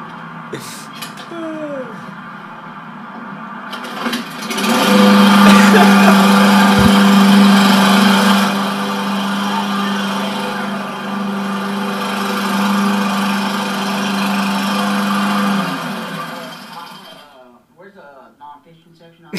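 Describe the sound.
A lawnmower engine drones loudly and steadily for about ten seconds, holding a constant low hum before cutting off, with a voice audible around it.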